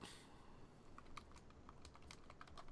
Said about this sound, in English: All right. I'm typing. You can probably hear me typing. I'm looking for it.